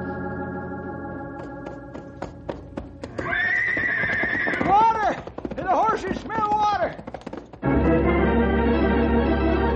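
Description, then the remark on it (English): A horse whinnies loudly with a rising and falling call as horses are ridden, amid a steady rhythmic clatter of hooves on hard ground, with a sustained hum underneath and a dense rumbling rush toward the end. “Just ride until the horses drop, and then walk, and then crawl.”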